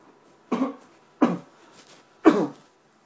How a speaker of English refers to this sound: Sorry, America, I had to cough and, you know, it happens. People need to cough. I don't want to cough into the microphone, but I had to cough and there's no mute button on this voice recorder, or else I would mute it.